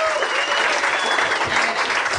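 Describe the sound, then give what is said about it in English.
Steady, dense audience applause at a live show, many hands clapping at once in a loud, continuous wash with no talking over it. “We should pause our campaign there and give Spencer his due in applause for him.”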